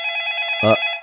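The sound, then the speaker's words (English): A telephone rings with a bright, steady electronic trill lasting the whole moment, clear, with a brief low thump partway through. “Oh, you know what? The phone's ringing.”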